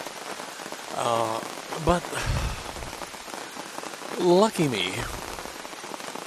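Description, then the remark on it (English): Steady rain patters on a taut tent while camping at Sandbanks park by the water, a continuous hiss of drops throughout, while a voice speaks a few words over it. “And that sound you hear is rain.”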